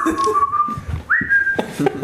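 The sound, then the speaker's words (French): A person whistles a signal call: a long steady tone, then a second sustained note that jumps higher, fairly loud, with faint background clatter and murmuring. “Ah, c'est le sifflement qui veut dire qu'il a trouvé un orque décapité dans un petit trou.”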